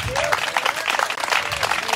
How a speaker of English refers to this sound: I want you to stand and give God a hand clap. Jesus is a way maker.